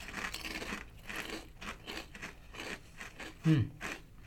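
A big, folded Deep River Snacks mango habanero kettle-cooked chip is bitten and then chewed, producing a steady run of dry, crackling crunches, with a brief low murmur near the end.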